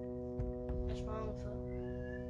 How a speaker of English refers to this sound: Can you shut your mouth? Your cat mouth? Meows.